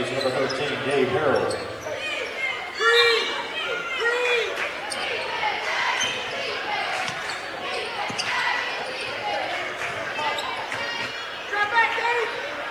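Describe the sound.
A basketball is dribbled down the right side of the lane on a hardwood gym floor during a game involving Gadsden City, its sharp bounces recurring over a steady wash of crowd noise and indistinct echoing voices.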